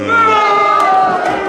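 One person lets out a long, drawn-out boo, a steady, fairly loud, low vocal tone with a slight wavering pitch that holds for the whole moment.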